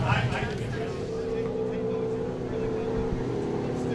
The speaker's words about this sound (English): No starter motor, no modern electronics, no nothing. You swing the handle, there it goes.